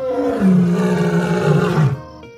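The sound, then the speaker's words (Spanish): A zoo lion, startled by a loud ambulance siren, lets out one long, deep roar lasting about two seconds, loud and rumbling with rich harmonics, then breaks off abruptly into near silence. “El león rugió como si protestara por el bullicio.”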